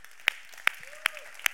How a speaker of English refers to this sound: Yeah, it's okay to clap.